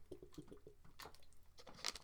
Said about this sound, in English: Get some fucking water. Gotta get that water. Bottles of water. Gotta get the water. Yeah, not so bad. What, I waste like fucking like 35 seconds to hear me drink water?